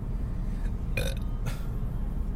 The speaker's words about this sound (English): In some countries, if you burp, that means you like the food. So just think about that. Mom, I love the food.